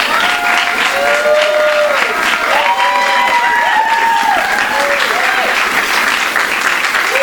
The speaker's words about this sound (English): Let's please give him a warm round of applause.